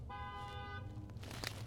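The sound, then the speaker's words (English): A single sustained car horn honk, steady and bright for under a second, sounds over a constant low rumble of road traffic in Fairview, New Jersey, heard from inside a car, followed by more muffled street noise. “This is a drive-by podcast, and welcome to Fairview, New Jersey. We were upstate all weekend and did not hear one horn”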